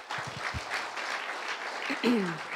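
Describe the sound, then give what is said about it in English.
A crowd applauds the moms with dense, steady clapping throughout, and a voice rises briefly in a cheer near the end over the sustained applause. “Can we just give our moms another hand?”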